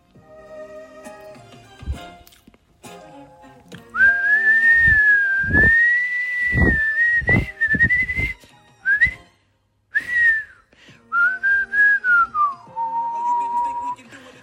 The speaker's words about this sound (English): I bet you didn't know I could whistle. I bet you a dollar you didn't know I could whistle.